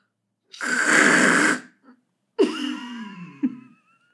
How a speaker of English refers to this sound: Here, have a tissue. Blow your nose.